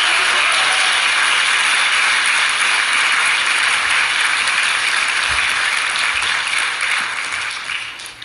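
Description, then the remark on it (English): A crowd applauds steadily for about eight seconds to claim their freedom and sovereignty, a dense, even wash of many hands clapping that holds its loudness and then begins to thin out right at the end. No one speaks. “I claim, and I ask you with me right now by your applause, to claim your freedom and your sovereignty in this moment. Let's have a hand for that.”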